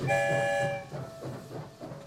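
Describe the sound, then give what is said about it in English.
A train rolls out of the end of a tunnel with a steady, rhythmic clatter of wheels while its horn blares a loud chord at the start, then fades to a fainter lingering tone. No one speaks. “We're headed for the rainbow tunnel that will take us far, far away. I wonder where the story train will lead us this time.”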